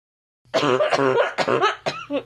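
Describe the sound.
A person's voice does an impression of the MGM lion's roar: a loud, rough, growling burst followed by several shorter harsh, cough-like rasps, all in one breathy run with no speech.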